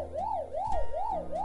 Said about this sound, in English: That's the segment buzzer. You know what that means.